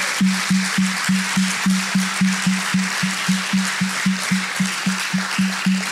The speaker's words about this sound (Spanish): ¿Qué tal que le demos un aplauso a esas personas que vinieron por primera vez?